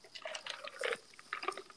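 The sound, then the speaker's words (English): Quiet trickle of water with scattered bright drips and splashes, an irregular liquid patter running steadily throughout with no voices. “And that water sounds amazing.”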